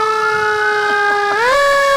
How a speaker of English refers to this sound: If you ever hear sirens now, from now on.